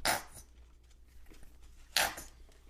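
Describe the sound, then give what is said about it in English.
Two short, sputtering squirts from a squeeze bottle of French's mustard, a wet hissing burst at the start and another after a brief quiet pause, with no one talking. “Yeah, get that mustard squirt.”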